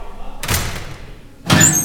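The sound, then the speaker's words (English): A metal locker door slams shut with a loud bang, followed about a second later by a second sharp slam that rings briefly with a metallic clang. “Tommy slams a locker door and squirts his water bottle all over himself.”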